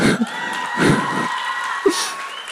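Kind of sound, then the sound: crowd, audience applause and cheering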